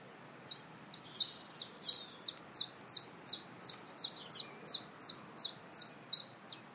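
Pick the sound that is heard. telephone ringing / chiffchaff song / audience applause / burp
chiffchaff song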